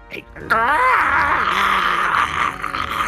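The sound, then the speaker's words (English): A voice imitates the gurgling, unholy screech of a gore-dripping, undead monster that lacks a lower jaw: one sustained, strained wail with wavering pitch and a rough, bubbling texture, loud and lasting nearly three seconds. “Yeah, rears back its, you would say face, but it lacks a lower jaw and still lets out this gurgling, unholy screech.”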